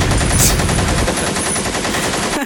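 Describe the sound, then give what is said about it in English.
Loud, rapid machine gun fire sound effect rattles continuously, a dense burst of repeated shots with no pauses, cutting off abruptly at the end. “Get a motherfucking machine gun.”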